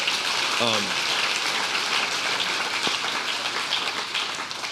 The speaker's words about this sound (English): Let's give God a clap for that.